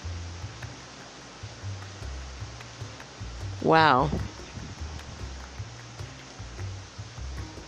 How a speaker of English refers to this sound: Speaking of magical, hope you guys can hear this rain. Oh my God. There's a lot of rain. That's beautiful. And you can hear it. It's pouring down on the roof and all of the banana trees that are in the neighbor's yards.